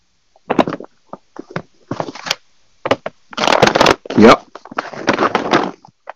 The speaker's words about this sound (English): I don't know where all that background noise is coming from. Sounds like a lot of shuffling around and stuff. Sorry, that was me trying to get nuts.